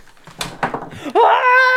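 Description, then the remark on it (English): Several loud clattering knocks in quick succession as objects are knocked over and tumble, followed immediately by a sustained, rising tonal cry that holds until the end. “I'm knocking things over.”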